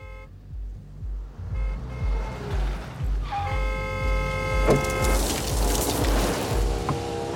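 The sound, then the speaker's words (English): A car engine rumbles as the vehicle rolls up, its low throb steady throughout, with a couple of bright horn toots sounding midway. “So where did you get the car?”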